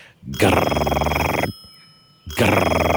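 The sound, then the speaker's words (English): An old-fashioned telephone bell rings loudly, a rapid metallic trill lasting about a second, then a short pause before the next ring begins. “she called the number, and it rang and rang, and it had one of those rings that doesn't sound like a normal phone ring, like... almost sounds like you're calling someone from 40 years ago, and it just kept ringing and ringing.”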